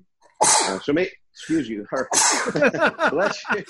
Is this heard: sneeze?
yes